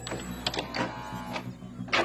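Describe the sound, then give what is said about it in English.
A stuck drawer at the back of the machine scrapes and grinds as it is pushed shut, with several rough, hissy bursts over a steady low mechanical hum; no one speaks. “As I pushed this drawer back, a hidden side panel in the wall opened, and it looks like there's something inside it.”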